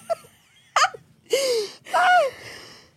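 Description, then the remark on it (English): A few short, throaty belch-like bursts in close succession, the last two longer and louder with a croaking, falling pitch, with no talking. “Who's belching?”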